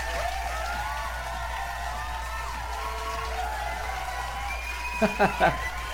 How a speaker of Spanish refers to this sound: ¿No? Un aplauso.